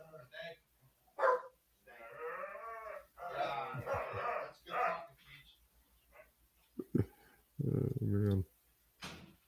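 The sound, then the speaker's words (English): A dog barks several times in short, loud, irregular bursts at a food delivery arriving, with brief pauses between outbursts and a muffled voice faintly audible in the background. “When the DoorDash comes and you have to go get it. And there's nothing wrong with that. Dogs will always let you know.”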